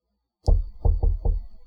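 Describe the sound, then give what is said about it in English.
A gentle knock on a door: four soft, low thuds, the first slightly apart and the last three in quick even succession, with a faint high tone lingering underneath. “I gently knock on the door.”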